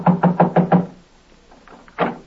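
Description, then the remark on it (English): Five quick, evenly spaced loud knocks rap on a front door, then a short silence and one more single knock. “I'll call on every house in the block.”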